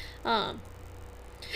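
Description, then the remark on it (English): A person hiccups, with a short voiced catch early on and another sharp, abrupt hiccup after a brief pause. Both are fairly loud, with no talking. “Hiccup.”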